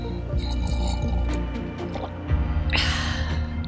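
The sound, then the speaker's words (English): Wet, liquid slurping of someone sipping piping hot Plum Deluxe winter comfort chai tea from a mug in a home studio in Austin, Texas, with small drippy mouth sounds and then a longer, airy slurp toward the end. No one speaks. “That, my friends, is the sound of winter comfort chai tea.”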